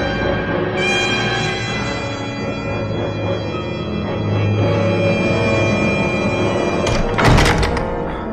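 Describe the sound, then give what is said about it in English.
Heavy doors slide shut with a steady mechanical hum and rumble, ending in a loud thud as they seal. No one speaks. “The doors will protect Nova.”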